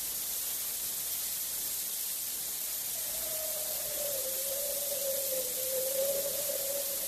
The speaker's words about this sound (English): Bitter cold, and there's a high wind blowing. Think it'll snow?